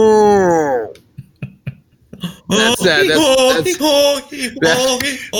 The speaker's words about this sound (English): I'm turning up the heat on 106.2 The Moo Moo. All cow noises all the time.